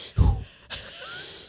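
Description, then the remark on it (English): A person imitates patterned, Lamaze-style breathing: a quick, huffing inhale followed by a longer, airy breath out, with no speech. “And at one point, maybe we're up 20, 25 minutes in, the breathing became almost Lamaze-like.”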